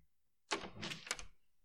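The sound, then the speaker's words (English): The front door of an estate house opens with a quick latch click and a short rustling swing lasting under a second, alone against a quiet background. “Later that afternoon, the front door to the Birch Estate opened,”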